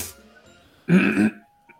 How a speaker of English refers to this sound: Had to clear my throat.